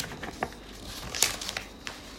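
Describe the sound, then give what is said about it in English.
Soft, irregular crinkling of the twist of paper wrapping a peppermint being unwrapped, a scatter of quick papery crackles with one sharper rustle partway through, no voices. “Mrs. Jones was unwrapping yet another peppermint, her black eyes seemingly fixed on the twist of paper in her hands.”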